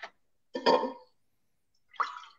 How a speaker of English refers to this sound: Oh, I was pouring myself a drink.